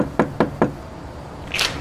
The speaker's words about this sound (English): Okay, I'm going to keep knocking.